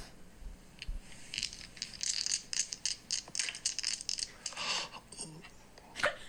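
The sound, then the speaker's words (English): Dice clatter and rattle in a game of craps, a quick burst of sharp clicks, tumbling and bouncing for a few seconds before coming to rest, with a final louder knock near the end. “And he starts to play a little bit of craps.”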